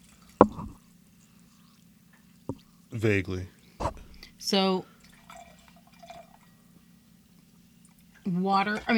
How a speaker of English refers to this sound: Soda. The fizz in it. Mm-hmm. That's what my ears sound like all the time. The carbonation.